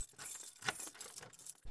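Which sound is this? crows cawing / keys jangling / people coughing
keys jangling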